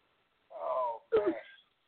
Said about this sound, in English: This bitch has a phone snoring. This bitch has a phone snoring. How do you answer the phone when you sleep, stupid? Let me hear the snore again.